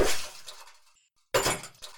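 Two loud smashing impacts a moment apart as two cell phones are thrown to the ground and smashed near a movie theater close to Endicott Street, each with a brief crackling, shattery tail and no voices.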